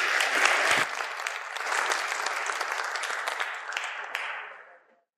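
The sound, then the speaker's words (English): A crowd applauds steadily for about four seconds, a dense wash of many hands clapping, then the applause thins and fades out. “Give a round of applause for being so brave.”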